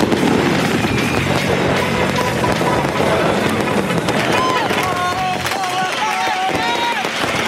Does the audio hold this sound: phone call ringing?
no